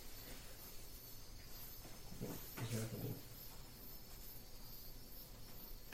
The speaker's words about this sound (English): Crickets are going nuts.